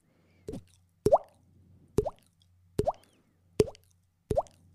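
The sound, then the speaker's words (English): A person imitates water droplets with their mouth, making six wet plopping clicks with a quick rising pitch, evenly spaced about once a second, with a faint low hum between them. “I can make a water droplet noise with my mouth.”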